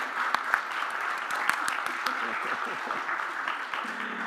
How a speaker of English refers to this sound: and so we just want to greet you and welcome you. If you guys could give a round of applause to our newest members. Thank you.